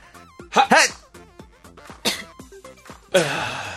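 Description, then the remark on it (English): A woman coughs in a series of harsh, close bursts with throaty voiced gasps between them, finishing with a longer, raspy hack that trails off. “Stop coughing, Stop woman! Coughing”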